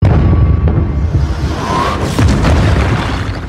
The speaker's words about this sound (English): Now I'll just find a spacey explosion. Them landing on their knee kind of thing.